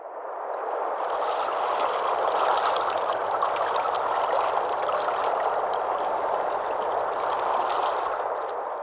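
A river rushes steadily for the whole stretch, a dense, even wash of churning water with a fine hiss on top. It's constant, with no voices.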